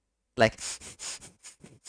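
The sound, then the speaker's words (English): A voice imitates heavy breathing: a short voiced gasp followed by a quick series of loud, breathy pants, about four to five per second. “Whenever you say thighs, I'm just like breathing hard, like yeah, so Just true. heavy breathing. Yeah, very heavy breathing.”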